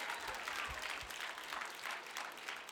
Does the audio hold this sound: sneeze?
no